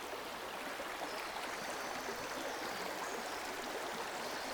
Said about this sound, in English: What sort of feelings do you get when you listen to this, the running river?